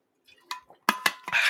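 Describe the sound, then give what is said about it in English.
Someone drinks water noisily: a few sharp, loud gulps and glassy clinks in quick succession, followed by a breathy, hissing rush of air. “That was a very loud way to drink water.”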